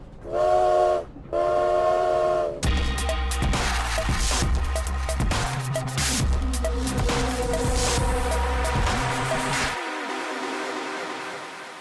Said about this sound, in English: I can sense them. They're disembarking off the train in Moscow.